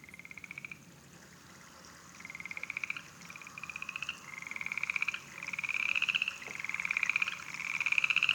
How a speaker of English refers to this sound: So this is, I think, turning into my favorite frog sound. It is the upland coarse frog.